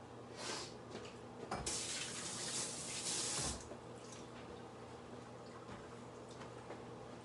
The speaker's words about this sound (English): So yeah, I'll dump some water out in the last one.